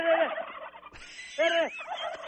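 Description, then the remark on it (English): Several turkeys on a small hobby farm gobble loudly in two rapid, warbling bursts separated by a brief pause, their rattling calls overlapping in a noisy chorus. “Yeah, see? They gobble.”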